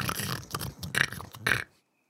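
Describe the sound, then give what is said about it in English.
A voice imitates a high-pitched pig snort, three or four rough, grunting bursts in quick succession, the last one loudest, then silence. “what is the upper crust snort like? I think it's like a higher pigs, register.”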